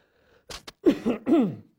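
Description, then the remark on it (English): Someone loudly clears their throat into a microphone: two short, harsh bursts of breathy noise followed by three gruff, voiced rasps in quick succession, with no speech around it. “One thing I don't like about this thing is I can't, you know, clear my throat or cough without blasting everybody's eardrums off.”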